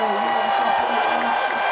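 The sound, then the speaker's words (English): A brief burst of canned applause and crowd cheering, cued and edited in on the show Black of the Berry, a dense, steady wash of noise that holds at an even loudness for under two seconds. “Cue the applause for me.”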